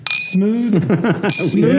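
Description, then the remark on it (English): Glasses clink together in a toast, two bright ringing taps about a second apart, with people's voices talking between and over them. “Oh, cheers. Cheers.”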